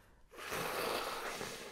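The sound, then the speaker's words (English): After a brief silence, someone blows their nose hard into a tissue, a single long, forceful, rasping honk that lasts over a second, with no talking. “I think it's just do you want me to wait while you blow your nose?”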